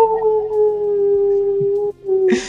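A dog lets out a long, steady howl that holds one pitch for about two seconds, breaks off briefly, then picks up again before ending in a short noisy burst.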